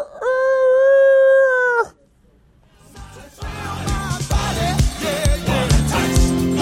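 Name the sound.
rooster crowing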